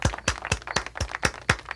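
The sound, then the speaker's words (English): Steady, rhythmic clapping from a show audience welcoming the scorekeeper: about eight sharp claps evenly spaced at roughly four per second, each with a dull thump, with no talking over it. “She might count the number of claps.”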